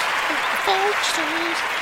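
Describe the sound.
An audience claps in a dense, steady wash of applause that holds at an even loudness throughout, with a few raised voices calling out over the clapping.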